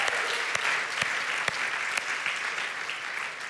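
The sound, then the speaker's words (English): An audience applauds steadily to thank the worship team for leading worship, a dense wash of many hands clapping with a few sharper individual claps standing out, sustained at an even level throughout. “Okay, some of y'all didn't know whether to clap or not, so like, can we say thank you to the worship team for leading us in worship today?”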